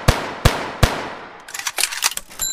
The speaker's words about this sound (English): It was one of those things that the song became famous just by that, clearly that noise of just, like, the bank, like, the cash register opening and then the gunshots.